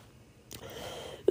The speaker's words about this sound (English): It's funny how I talk about that and then just have the urge to cough, excuse me.